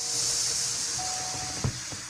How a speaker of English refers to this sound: She's slowly letting the air out of the balloon. Slowly letting it out, really taking her time with it.